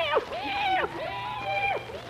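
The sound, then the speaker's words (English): A cat meows several times in a row outside on a dark night with no moon, each call a drawn-out rising and falling cry, clear over a quiet, faintly humming background. “Hey, kitty, kitty, kitty, kitty.”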